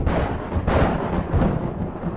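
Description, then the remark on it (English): The distant thunder of jumping rocks at night, a deep, continuous rumble like rocks tumbling and crashing, loud and heavy in the low end, with a stronger surge early on and no voices. “With it came the distant thunder of jumping rocks.”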